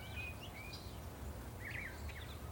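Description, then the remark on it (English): Faint, scattered bird chirps and short whistled calls over a steady low rumble of outdoor background noise, with no one speaking. “Let's think about all the birds chirping.”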